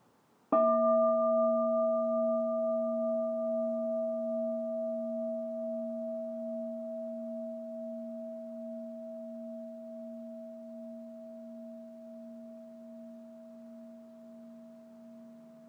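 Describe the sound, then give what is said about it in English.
A single bell strike rings out with a clear, steady tone and several pure overtones, then hums on and fades very slowly over about fifteen seconds, with no voices. “Can I have a sound of the bell?”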